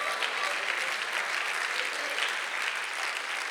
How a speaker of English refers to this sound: If you believe that today, why don't you clap your hands for a moment and just shout it. With God, all things are possible.